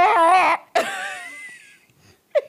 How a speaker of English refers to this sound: No, I was yawning.